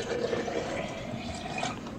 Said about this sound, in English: Want me to pour the oil, Mother? Thank you, son. But God, through his prophet, said that I must pour the oil, and we must do always exactly as the Lord commands.